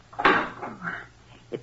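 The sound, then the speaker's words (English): A metal furnace door is shut with a single solid clunk and a brief rattle, followed by a faint shuffle and a short knock near the end. “shut the door, please.”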